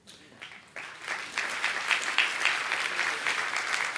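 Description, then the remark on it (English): A crowd breaks into applause for the speaker's wife, with whom he celebrated a 37th anniversary, that starts thin and quickly swells into steady, dense clapping, holding at a fairly loud level throughout with no voices standing out. “You should be applauding her for that.”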